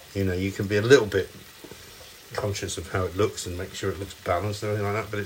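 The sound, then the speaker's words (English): Tuna sizzles and fries steadily in a pan, a soft continuous crackle running beneath a person talking throughout. “you can hear the tuna frying behind me.”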